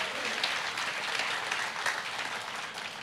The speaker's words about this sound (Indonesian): Berikan tepuk tangan buat Tuhan.